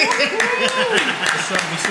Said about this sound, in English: Clap it up for yourself.